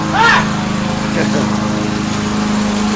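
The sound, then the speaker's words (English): A small lawnmower engine starts and runs with a steady, loud, buzzing drone. A brief rising whine at the very start gives way to a constant rumble. “The starting of a lawnmower.”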